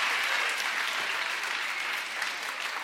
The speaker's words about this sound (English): Guys, can we get a good big round of applause for these guys for coming out and answering?